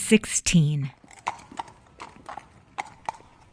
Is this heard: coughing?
no